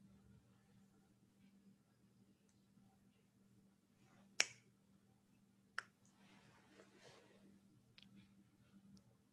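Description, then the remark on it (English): Two crisp finger snaps, a second or so apart, ring out sharply over a steady low hum. A person snaps their fingers each time they slip up while trying not to think about a white elephant. “And if you do, if you mess up, if you make a mistake, I want you to snap your fingers.”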